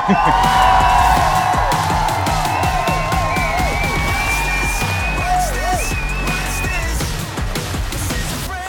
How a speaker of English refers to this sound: Ladies and gentlemen, give a big boisterous applause for the one and only Arian Foster.